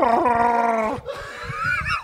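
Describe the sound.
A person loudly imitates the Star Wars character Chewbacca's Wookiee scream: a sustained, buzzing howl that breaks off after about a second, then a rising, warbling yowl, with no words spoken.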